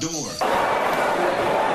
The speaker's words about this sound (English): Local idiot breaks hand on car door.